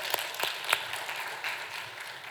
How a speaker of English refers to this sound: And let's just give a round of applause for our ushers. They always do such a great job.